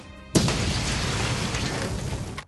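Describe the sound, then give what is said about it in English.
A large explosion erupts with a sudden sharp blast, then a dense, roaring rumble that sustains for about two seconds before cutting off. It is loud, with no voices. “Lockington reaches into his pocket and a large explosion goes off behind you, knocking you down.”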